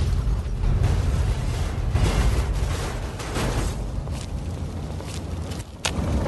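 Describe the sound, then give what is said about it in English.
Loud, rumbling video game explosions of cars being blown up by a super mutant companion, who kills himself doing it. Deep booming noise fills the whole stretch, with several sharper bursts cracking through near the end. No one speaks. “Did he kill himself by blowing up cars?”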